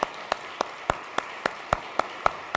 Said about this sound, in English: And I think it's important that we say thank you and also recognize we can offer up an applause of praise this morning for their labors on that.